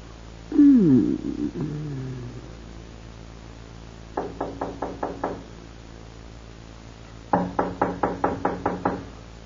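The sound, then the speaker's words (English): Two bursts of rapid knocking on a door, first six quick raps, then after a pause about eight more, firm. A brief sliding, creaky sound comes before them. “Better let me go. The door. Let it wait.”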